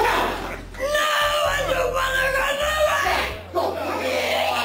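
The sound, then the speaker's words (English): A woman screams loudly in long, high-pitched, wavering cries as she is hit on the head with a Bible, broken by brief pauses for breath, intense, with a low rumble of background noise underneath. “Why is this woman screaming?”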